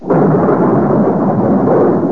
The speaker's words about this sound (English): The night of the storm. Such a storm.